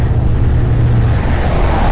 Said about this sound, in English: Another truck.